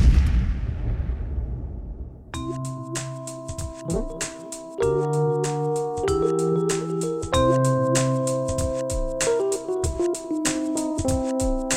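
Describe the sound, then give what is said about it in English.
A deep explosion in a movie rumbles and fades over about two seconds, then loud music with sustained tones and sharp, steady percussive hits takes over. “Throughout the movie, there's a bunch of like tender, heartfelt moments that are interrupted by explosions.”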